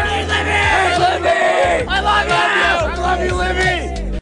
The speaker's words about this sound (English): They're talking about, that's a group of nutbag teenagers just going out of their minds cheering for this college gymnast who, actually on that day, she didn't even compete in the right event that they went to attend. And that's not inside the venue